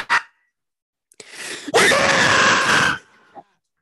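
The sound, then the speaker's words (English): A short sharp yelp, then a person's loud, sustained scream into a microphone lasting over a second, harsh, trailing off with a brief breathy tail. “I love how it does that, but when I scream for some reason this mic doesn't clip it.”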